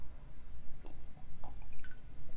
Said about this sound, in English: Just taking a little sip of my latte. Tastes good this morning.